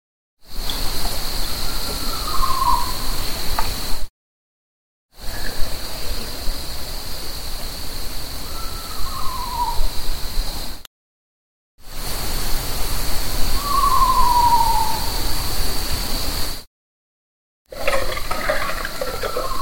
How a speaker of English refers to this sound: Okay, so that's that owl or something, right? Yeah, it's as close as I can get to what it is. It's definitely not a coyote.